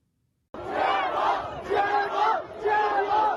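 A large crowd of students in China protesting COVID-19 lockdowns chants loudly in unison, voices rising and falling in three rhythmic swells of repeated phrases after an abrupt start.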